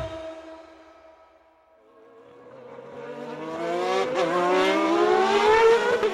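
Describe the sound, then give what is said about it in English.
A McLaren Formula 1 race car screams past at high speed, its engine note dipping, then rising into a loud, sustained high-pitched whine as it accelerates and revs up, with no voices. “If you could see inside a McLaren F1 car, of course, first you'll have to get it to stand still.”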